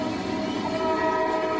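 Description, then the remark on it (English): A train horn blares steadily, its sustained harmonic tones holding for over a second on top of a low rumble of rail noise, loud and unbroken with no voices. “We were used to the horn, but that shit was shining its fucking horn.”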